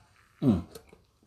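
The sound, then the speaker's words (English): A single quick sip of hot Trader Joe's coffee, a brief slurping burst followed by a couple of faint mouth clicks and a swallow, with no talking. “And I'm going to take a sip of my coffee real quick because it's absolutely fucking delicious.”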